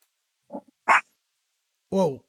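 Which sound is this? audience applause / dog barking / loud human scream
dog barking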